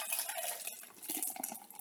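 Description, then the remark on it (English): Beer pours steadily into a glass, a continuous bright, fizzy splashing stream with small gurgles, lasting about two seconds with no voices. “I'll pour more beer.”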